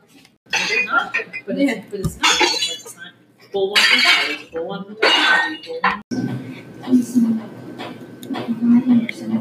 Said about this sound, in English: Your house is falling apart and he's breaking everything. You hear plates shatter and things falling.